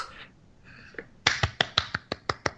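Hands clap in a quick, steady rhythm, about eight sharp, loud claps after a softer first one, following a brief stretch of quiet murmur.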